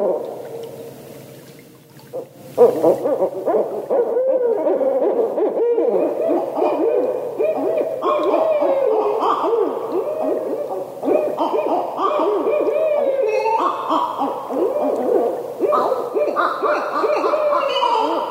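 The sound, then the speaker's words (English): A barred owl calls in a long series of loud hoots, rising and falling in rhythmic phrases with a few brief pauses, no talking over it. “Do you recognize that call? That's a barred owl.”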